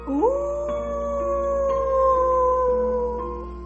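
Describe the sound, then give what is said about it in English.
A single long, sustained distant howl at night rises at the start and holds a steady mournful pitch for several seconds, fairly loud, with no talking. “"It is probably an old dog howling at the moon," he reassured me.”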